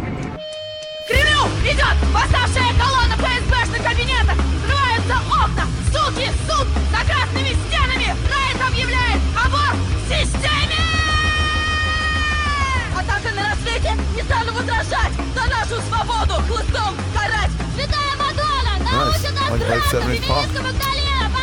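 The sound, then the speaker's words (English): A loud, dense punk song kicks in after a brief pause, with high, young-sounding voices yelling over thick, driving guitars and drums that stay at full volume throughout. “They sound like they're little kids yelling.”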